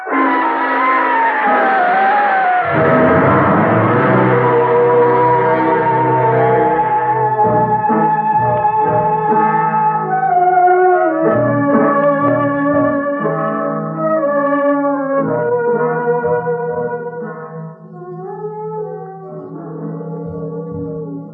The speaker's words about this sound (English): Temple bells always go off at midnight? Yes, they ring for the souls of those who entered this palace grounds and were never seen again.